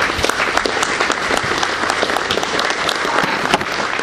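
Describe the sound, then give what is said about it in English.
Sustained applause from a large audience giving a standing ovation, dense and steady clapping for several seconds without letting up, loud, with no one speaking over it. “I would like for you all to give a standing ovation to the important people.”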